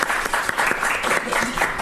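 An audience claps steadily, a dense, sustained patter of many hands at a fairly loud, even level, with no one speaking over it.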